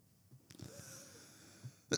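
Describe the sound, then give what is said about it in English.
Faint coughing from a person who has been coughing for about five days: a short, breathy cough early on, then a quiet stretch of breathing before a sharper, louder cough bursts out at the end. No one speaks. “God damn, when you gonna stop fucking coughing? You've been coughing for like 5 days now.”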